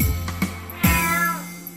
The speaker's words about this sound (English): A cat.